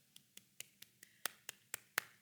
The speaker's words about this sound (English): And so then it would be like the, not just the two finger, but the real golf clap, which is like.